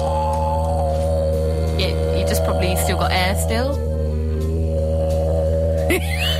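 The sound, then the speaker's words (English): A voice imitates a didgeridoo with a continuous, low, buzzing drone rich in steady harmonics, held for the whole clip, with a brief remark spoken over it. “Anyway, sounds like what is it called? I don't know. Didgeridoo.”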